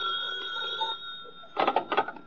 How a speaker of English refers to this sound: Your telephone's ringing.